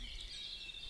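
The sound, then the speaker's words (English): A grey warbler's thin, high-pitched song trills steadily, quiet and continuous against a soft outdoor background, with no one speaking. “There's a blackbird singing, and a grey warbler.”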